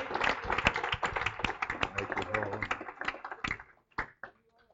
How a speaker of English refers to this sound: Okay, okay, let's clap our hands to the Lord.